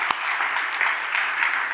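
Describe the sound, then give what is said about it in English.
A crowd claps for Jesus with steady, dense hand clapping that fills the whole stretch at an even, fairly loud level, with no voices standing out. “But hand clap for Jesus, I think, for that, don't you?”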